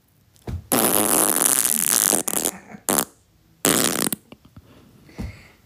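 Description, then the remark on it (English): A loud, raspy fart stretches for over a second, followed by several shorter sputtering bursts with brief gaps between them. No one speaks. “Just fart in her face for the culture, bruv.”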